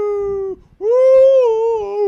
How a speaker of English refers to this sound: I mean, I know some dogs are like, they love to see their owners, but these dogs, they talk. They cry. I've gotten them to say, I love you.